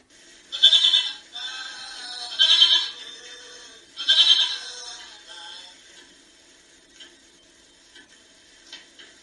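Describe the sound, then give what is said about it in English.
Three loud, wavering sheep bleats come in quick succession over about five seconds, each harsh and nasal, followed by a few faint scattered noises as things quiet down. “Those sheep are really getting out of hand.”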